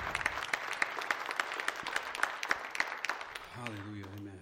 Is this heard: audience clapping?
yes